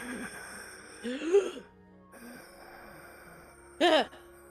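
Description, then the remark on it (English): A voice imitates air escaping from a dying body: two short, raspy, breathy exhalations, a wheezing sigh followed after a pause by a louder, strained gasp, with no talking. “not really breathing, but it's just like the last bits of air escaping, and it's like.”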